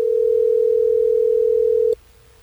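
A single steady telephone ringback tone hums for about two seconds, clear and even, then cuts off abruptly into near silence, as radio station Hot 101.5 in Tampa Bay places a call to a listener. No voices are heard.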